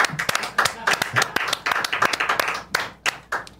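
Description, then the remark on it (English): Hands clap sharply and repeatedly for several seconds, a rapid, uneven string of crisp smacks at fairly steady loudness, with some voices faintly mixed in underneath. “No, I run in, and then clap, and then I wait.”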